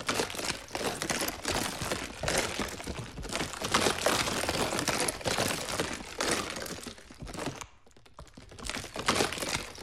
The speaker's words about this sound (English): You guessed that it is ice water being swirled around in a bottle, then you're correct. And I've used ice water throughout this track as a type of texture because I think it sounds super cool.